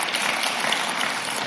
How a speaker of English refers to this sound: Would y'all give our pastors a hand clap?